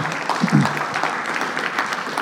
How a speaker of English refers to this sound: And before I preach the word of God to you this morning, I want to take a minute and once again thank everyone who made all of last weekend's 10-year anniversary festivities happen. Thank you. Go ahead. You can clap.